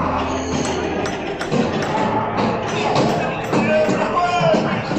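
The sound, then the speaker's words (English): Irregular knocking and dull thuds on doors sound through the hallway of knocking doors on a Disney ride, layered over a steady wash of background noise and faint, indistinct crowd murmur. “We are now in the hallway of knocking doors. And, wow. Still pretty cool. You can hear the knocking doors.”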